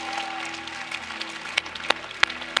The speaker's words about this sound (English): Come on, church, would you lift up a shout, a hallelujah, a hand clap?